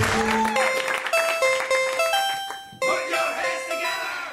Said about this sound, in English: Please put your hands together for your host, Cameron Esposito. Put your hands together. Get ready to clap your hands together. Put your hands together.